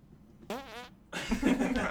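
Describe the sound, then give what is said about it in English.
A short squeaky, wavering fart is followed after a brief pause by a longer, louder, sputtering one with a raspy rumble, with no talking. “And now for the Fart of the Week”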